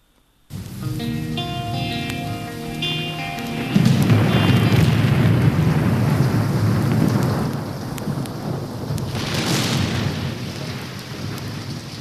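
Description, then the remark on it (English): Steady, hissing rain with deep rolling thunder that swells in after a few seconds and rumbles on loudly, with no voices. “Hear that thunder this morning?”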